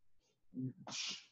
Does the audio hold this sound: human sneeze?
yes